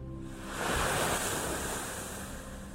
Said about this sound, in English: It's 6 degrees, but the sun is rising, the water is lapping beautifully as it crashes the sand, and it's just a beautiful morning to go in.